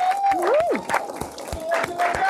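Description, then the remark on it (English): An audience claps for three volunteers in a dense, scattered burst of applause, with sharp individual claps standing out and a rising whoop or whistle of cheering over the crowd. “Can you clap them up?”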